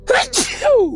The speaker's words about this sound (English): So what is a common response to someone sneezing?